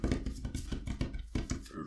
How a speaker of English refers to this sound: Oh, good shuffling. Good shuffling. I'm shuffling.